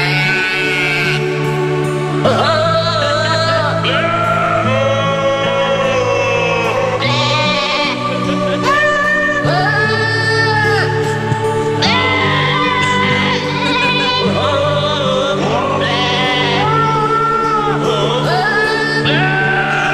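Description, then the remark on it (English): Goat bleats strung together to sing the Christmas carol Silent Night, each wavering note following the melody over a steady musical backing. It is loud and continuous, with no talking. “You mean goats singing Silent Night?”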